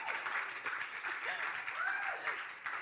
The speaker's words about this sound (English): Anyone who's been on the setup team just clapped louder than everybody else.